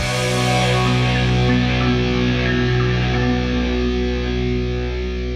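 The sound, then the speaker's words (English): A thick, sludgy distorted electric guitar chord rings out loud and sustained, its murky mid-range tone droning steadily for several seconds with no voices present. “This kind of mid-rangey sludge. Just like, not even like interesting distortion, just like, wow.”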